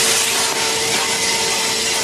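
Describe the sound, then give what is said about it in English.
A power washer sprays a car as car wash workers, convicts in a prison program in Taidong, clear grime off a car window, one loud, unbroken rush of hissing water, a steady motor whine droning beneath it for the whole stretch, with no voices. “Car wash employees wipe a car window clean using a power washer to clear off the grime.”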